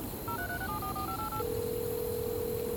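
A phone places a voice-commanded call: a quick sequence of about eight dual-tone dialing beeps, then a single steady tone holding for over a second, all fairly quiet over a faint background hiss with no talking.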